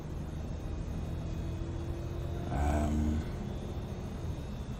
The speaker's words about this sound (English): I listen to the rattling here in the back of the bus.